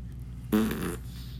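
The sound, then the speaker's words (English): A single short, buzzy fart-like sound made with the mouth, about half a second long, fairly loud, with quiet background hum before and after. “that was my mouth. I didn't fart, I swear.”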